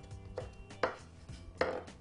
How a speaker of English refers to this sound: Cut that. Give it a couple of chops.